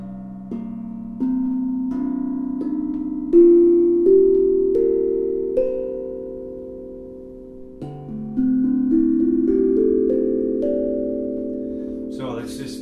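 Ringing tuned drum notes, each drum tuned to a scale in a different key (C and D), climb step by step up a scale, each tone sustaining into the next, then a second run starts lower and rises again, fairly loud.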